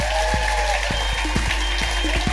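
A crowd applauds loudly for Lou Sanders, with dense, steady clapping and a few sharper individual claps standing out. No one speaks over it.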